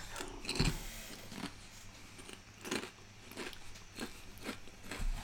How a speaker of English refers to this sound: It's probably really boring because we're just eating most of the time.